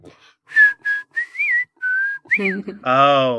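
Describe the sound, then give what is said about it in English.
A person whistles a short, bouncy cartoon theme tune, several separate notes sliding up and down in a quick rhythm, ending with a brief voiced, sung-sounding note. “Then he started whistling the tune.”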